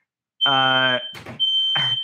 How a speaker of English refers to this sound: Yeah, there's a fire alarm. Why don't I just mute myself?